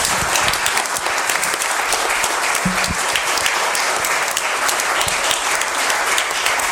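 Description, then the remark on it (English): A church audience applauds two women being thanked, a dense wash of many hands clapping at an even, fairly loud level for several seconds with no voices standing out. “So I think we need to give a big round of applause for these two ladies.”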